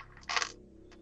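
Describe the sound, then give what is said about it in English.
Dice clatter across a tabletop in one quick, bright rattling burst, followed by a couple of faint ticks as they settle. Fairly loud, with no talking. The dice are rolled for hit dice in a game. “I've rolled an 8, then a 7, then a 6, then a 5.”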